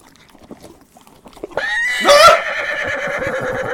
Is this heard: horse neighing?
yes